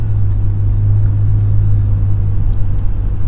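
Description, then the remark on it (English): Steady low engine rumble and road drone from inside a car moving in morning traffic, a continuous loud hum with faint brief ticks above it and no voices. “Boy, I'm not liking traffic this morning, I'll tell you that.”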